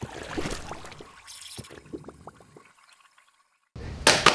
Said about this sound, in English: Yeah, that's the coffee grinding right now, and I'll be back with you in just a second.